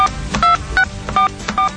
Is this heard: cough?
no